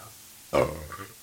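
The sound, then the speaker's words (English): A single short burp erupts suddenly out of quiet, low and rough-edged, then trails off into a fainter gurgling tail. No one speaks. “Don't do that. No farts, no burps.”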